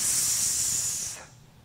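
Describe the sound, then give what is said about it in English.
A voice makes a long, steady hiss in response to the name Haman, as done in the Purim custom, a bright airy sound held for just over a second before it cuts off into quiet. No other sounds or talking. “And when they say the name Haman, the children all respond by hissing.”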